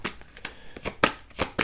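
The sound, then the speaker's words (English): Tarot cards being shuffled and drawn in a quick run of crisp, papery flicks and snaps, about seven sharp bursts with brief pauses between them, and no one speaking. “May I have some more cards, please?”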